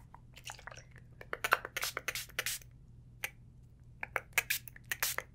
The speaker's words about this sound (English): Okay. I'm gonna spray your hair a little bit.